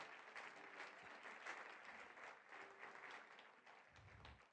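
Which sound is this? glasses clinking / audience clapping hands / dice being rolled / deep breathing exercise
audience clapping hands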